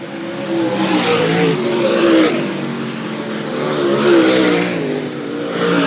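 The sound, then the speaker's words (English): Race car engines roar steadily at Latrobe Speedway, their pitch rising and falling as they rev, loud and continuous throughout, with no voices. “Good time this year. First time at Latrobe Speedway.”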